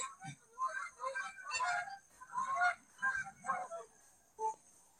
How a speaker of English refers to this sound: I see that you're watching the birds. Sorry, the geese just flew right over me.